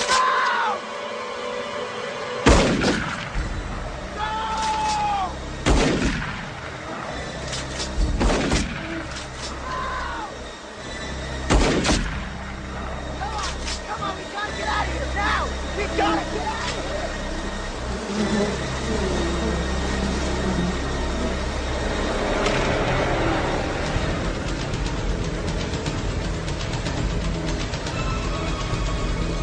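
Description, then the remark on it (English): Loud motorcycle engines roar and whine through a chaotic chase, punctuated by several sharp bangs and crashes in the first half, with a continuous dense rumble of revving and traffic noise throughout. “So instead of the Corvette 18-wheeler car crash, we're treated to a motorcycle chase.”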